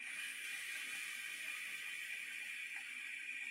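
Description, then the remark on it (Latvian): A single-coil vape fires during a long puff of mango-flavoured liquid, giving a steady hiss and faint sizzle that holds for several seconds without pause, with no voices. “Viens tvaiks.”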